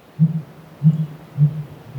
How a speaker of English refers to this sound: In spring, a male sooty grouse calls from a concealed perch high in a tall conifer. Known as hooting, it's a very low-pitched, 5- or 6-note thunking sound.